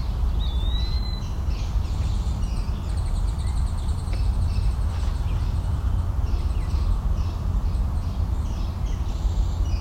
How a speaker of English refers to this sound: So here's starlings.